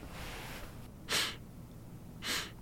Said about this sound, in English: Are you sniffing the inside of your pocket?